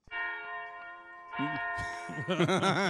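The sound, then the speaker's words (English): A church bell sound effect, rung when someone curses, rings out loud, its first strike humming with a long, sustained tone before more overlapping peals pile in, growing busier and clanging toward the end. “The bells are rung when I curse.”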